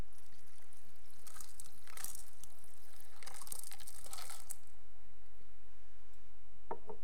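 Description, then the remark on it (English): Water is poured into a glass in a few bright splashing bursts over roughly three seconds, then a quiet stretch with a faint tap near the end. “If I had another glass, I'd pour it in, but you know.”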